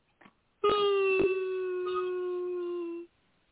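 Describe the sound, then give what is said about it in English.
A dog lets out a single sustained howl lasting a couple of seconds, steady and slightly falling in pitch, loud, preceded by a brief faint yip. “Oh, you howling.”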